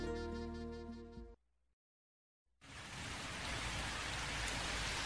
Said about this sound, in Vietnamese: Ào, ào, ào, trời mưa thật, đúng là cầu được ước thấy. Nhưng chỉ là cơn mưa phảng phất nhẹ.